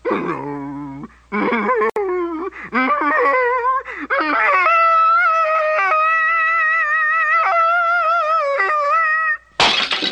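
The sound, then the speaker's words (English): Wonder Dog, a dog, yowls loudly in long, wavering, high-pitched howls that slide up and down in pitch, in a test of whether a certain sound frequency can shatter glass, cut off at the end by a sudden harsh burst like something shattering. “But Wonder Dog wasn't yowling when the blackboard shattered.”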